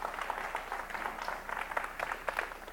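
An audience applauds steadily, many hands clapping at once in a dense, crackling wash that holds at an even, moderate loudness for a few seconds with no voices on top.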